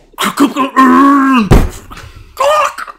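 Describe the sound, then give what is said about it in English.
A voice imitates a chaotic film battle scene in which Legolas fires two arrows into a cave troll, the troll drops its hammer and stumbles backwards, and Gimli kills an orc: a drawn-out, groaning wail, then a sudden breathy crash-like burst, followed by another short moaning cry. “The cave troll drops his hammer and stumbles backwards.”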